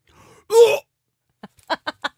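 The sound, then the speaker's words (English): A brief strained, raspy vocal growl as someone tries to sing in a guttural style, followed by a quick series of four short, sharp hiccups, fairly loud, with no talking. “It makes me hiccup every time I do it.”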